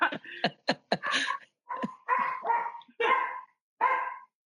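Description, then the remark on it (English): Several dogs bark in quick, overlapping bursts, about eight sharp barks over a few seconds, loud, with a couple of higher yips mixed in. No one speaks. “I'm going to shut my dogs out.”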